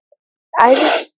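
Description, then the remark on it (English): A single loud human sneeze bursts out after a brief silence, a sharp breathy blast lasting about half a second before cutting off abruptly. “I'm going to let your sneeze live its best life.”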